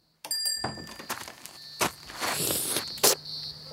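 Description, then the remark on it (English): A steady, high-pitched cicada hum drones throughout, with a few sharp thumps and shuffling footsteps. No one speaks. “Oh, there's that cicada hum again.”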